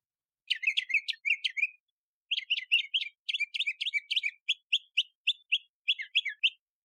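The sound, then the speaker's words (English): An older male mockingbird sings alone, rapid bursts of varied chirps and trills broken by a short pause, then repeated phrases that shift from one pattern to the next. “that A is sung by an older male mockingbird.”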